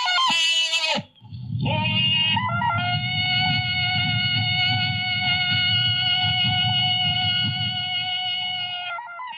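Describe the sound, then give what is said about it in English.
The original film recording of the Tarzan jungle yell: a loud, sustained cry from a single male voice, a warbling yodel-like call that breaks briefly then holds for several seconds over a low, rumbling background. “And then I'll let you listen to the real Tarzan.”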